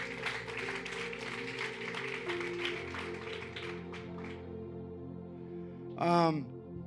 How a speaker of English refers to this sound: Let's give the Lord a mighty round of applause.